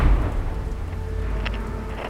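A stormy thunder effect: a deep, steady rumble with a rain-like hiss over it and a brief crackling flare near the end, with no voices.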